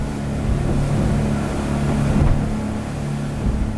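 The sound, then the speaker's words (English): A small motorboat engine drones steadily across the water on a trip from Baltra to Santa Cruz Island in the Galapagos Islands, Ecuador: a constant low rumble with a hiss of spray and wind, loud throughout with no voices. “And then get a small boat from Balta to Santa Cruz Island.”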